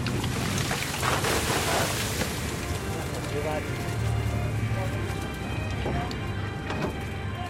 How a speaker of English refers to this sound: This is the moment we've all been waiting for. The net is drawn to the side of the boat and the first catch of the day comes on board.